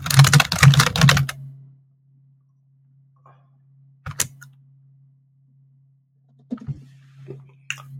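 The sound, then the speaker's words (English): A quick, dense burst of computer keyboard typing opens, then stops, leaving a steady low electrical hum broken by a few isolated key clicks. No one speaks. “We know you're still thinking because we can hear your keyboard, by the way.”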